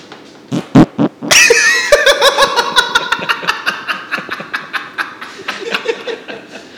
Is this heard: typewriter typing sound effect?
no